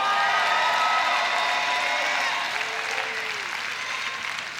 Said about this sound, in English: I want you by hand clap or shout to answer me. How many of you are ready to follow him with all of your heart?